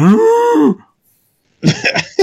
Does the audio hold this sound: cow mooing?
yes